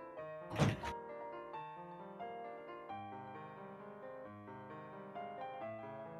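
A single dull thunk near the start as a door is opened to let out a cat that was scratching it, then steady tonal music-like sound continues in the background with no talking.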